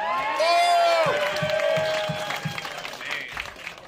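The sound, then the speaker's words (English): A crowd erupts in loud cheering and whooping for a battle that has just ended, high shouts rising over steady clapping that continues after the yells and eases slightly by the end. “All right, everybody makes noise for that fucking battle.”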